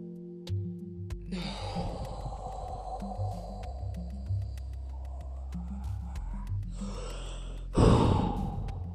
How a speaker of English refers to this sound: Now, the 4-7-8 is quite simple. It's a breathing technique. You breathe in for 4 seconds, so we'll start it breathing for, and remember, we hold it for 7, and then we let it out for 8.